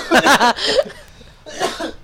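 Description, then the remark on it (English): A loud sneeze with a breathy vocal build-up bursting into a sharp explosive rush of air, followed a moment later by a second, softer sneeze-like burst. “Are you sneezing now?”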